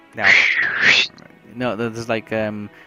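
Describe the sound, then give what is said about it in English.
A loud, shrill whistle lasting about a second, bending up and down in pitch, made by a person whistling to get somebody's attention, followed after a short pause by a softer stretch of voiced, call-like sounds. “That was me whistling with it, actually whistling”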